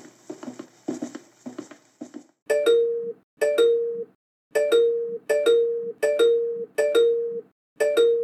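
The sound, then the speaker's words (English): A push-button doorbell rings over and over, about seven quick, evenly spaced electronic chimes that are loud, following a couple of seconds of muffled chatter or bustle. “It's a button, usually, and we call it a doorbell.”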